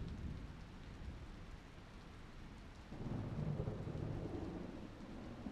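Steady rain hisses throughout, and about halfway through a low, rolling rumble of thunder swells in and lingers beneath the downpour. No one speaks.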